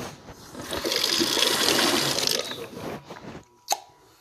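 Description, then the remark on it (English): Water runs from a sink tap in a steady, hissing stream for a few seconds as someone drinks from the sink, then shuts off, followed by a brief pause and one sharp click. “I need to like drink out of the sink.”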